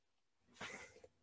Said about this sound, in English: has just sneezed into the mic for our audio listeners.